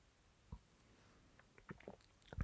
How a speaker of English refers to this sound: It does smell like you would expect a Kolsch to smell. So let's go ahead and take a sip here and see how we feel.